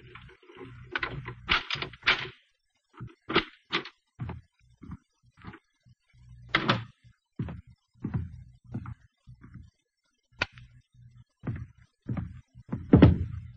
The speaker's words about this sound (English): Then we heard muffled footsteps coming down the hall and a key inserted in the lock of the apartment door.